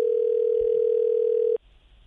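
Telephone line 3 rings with one steady, continuous electronic tone lasting about a second and a half, loud and clear, then it cuts off abruptly into faint background hiss. No one speaks.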